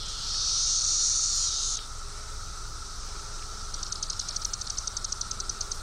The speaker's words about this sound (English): And then you have Magis cicada cassinii. They're smaller. And the other one's just a mixture of the two.